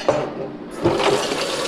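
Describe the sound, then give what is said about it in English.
Water sloshes and splashes in a kitchen sink as dishes are moved around, a steady wash of liquid noise with a couple of slightly louder surges. “Ooh, there's lots of water in that one.”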